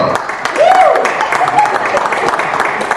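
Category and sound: crowd, audience applauding and clapping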